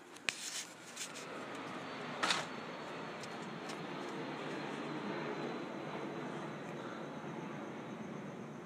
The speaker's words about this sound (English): I'm going to go outside. I can smell the wind, but also there's an airplane.